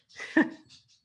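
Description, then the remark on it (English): A single sharp dog bark rings out, followed by a faint, muffled trailing sound and quiet background. “I'm sorry, my dogs are going to sound off.”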